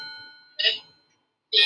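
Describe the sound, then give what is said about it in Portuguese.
A cuckoo clock chimes: a ringing tone fades out, then two bright, breathy calls sound about a second apart, with quiet between them and no one talking. “É um cuco.”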